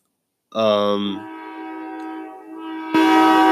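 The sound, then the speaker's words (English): A train horn blares loudly, a long sustained chord that holds steady before a second, sharper blast cuts in at the end, with no voices. “Okay, train, calm down.”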